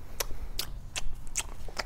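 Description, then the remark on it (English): Someone chewing, five short crisp bursts in a steady rhythm about twice a second over a low rumble, with no talking. “What are you chewing on?”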